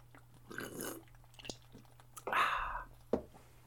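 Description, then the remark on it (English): Wet gulping of a big drink of beer: a few swallows and mouth sounds in quick succession, ending with a sharp click, over a faint steady hum and no talking. “All right, now take a big Oblivion Sea King gulp because it's about to get so stupid, buddy.”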